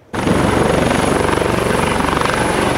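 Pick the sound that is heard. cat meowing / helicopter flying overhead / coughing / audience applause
helicopter flying overhead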